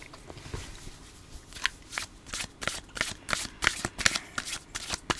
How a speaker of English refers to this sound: There's something very satisfying about the sound of those cards shuffling.